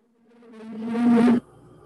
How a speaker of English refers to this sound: And the last video we will watch is an air show, airplanes.